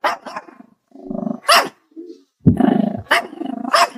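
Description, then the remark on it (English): A puppy yaps and barks in quick bursts, mixed with low rumbling growls, fairly loud, with short pauses between the outbursts. “You're gonna get worms one day from that puppy, and you're gonna learn.”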